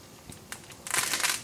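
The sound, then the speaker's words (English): A few sharp snaps and crackles followed by a dense burst of crunching and crinkling as dry spaghetti noodles are broken in half and added to a pot of water. No one speaks. “And so, yes, I'm breaking these in half and adding them to the pot of water.”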